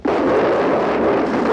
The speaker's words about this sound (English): and his voice is, drowned out in different parts by the racket of the gunfire.